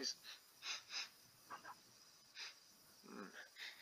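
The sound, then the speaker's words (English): A person imitates the dog Taban smelling around, with a series of about six or seven short, breathy sniffs through the nose, fairly soft, in an irregular rhythm with brief pauses between them. “Sniffing.”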